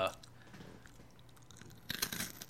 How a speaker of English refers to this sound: That crunchy sound. Give us another crunch there in the mic.